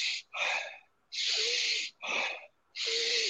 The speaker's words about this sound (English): I mean, I'll show you. Usually for an hour, it'll be deep breathing, belly, chest.